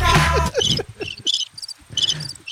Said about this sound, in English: How long is it? It's 11 seconds of crickets. It feels like 11 minutes.